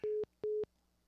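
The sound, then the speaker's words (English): A telephone busy signal after a dropped call: two loud, steady low beeps of equal length separated by a short pause, sounding alone with a faint hum beneath. “Joe's fucking phone went out.”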